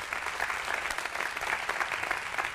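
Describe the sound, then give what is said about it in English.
A church audience claps steadily to rejoice with people who raised their hands to put their faith in Christ: a dense, continuous patter of many hands at a fairly even level with no voices standing out. “At all of our campuses, you guys clap, put your hands together.”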